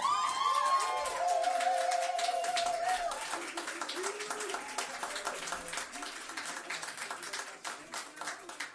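A crowd bursts into dense, steady applause, with loud whoops and cheers rising over the clapping in the first few seconds before the clapping carries on alone, tapering slightly toward the end.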